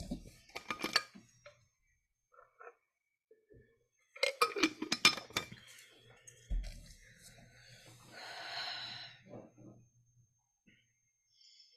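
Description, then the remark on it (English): A glass clinks and knocks in two short bursts of bright taps, followed by a soft, hissing swish like water moving or being sipped, all at a fairly quiet level. “Water.”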